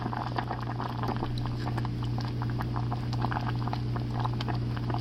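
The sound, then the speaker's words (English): Thick porridge bubbling in a pot, with a steady stream of soft pops and gloopy blips over a low, constant stove hum, with no talking. “Let me see, maybe you can hear the bubbling.”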